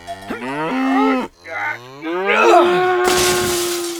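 A cow moos loudly, first a short bellow, then a brief pause and a long, drawn-out moo. The second moo ends with a rough, breathy edge.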